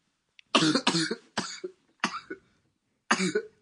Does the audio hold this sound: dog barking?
no